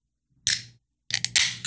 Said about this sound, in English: Another one? Didn't you just crack one like 2 minutes ago? It's a sparkling water,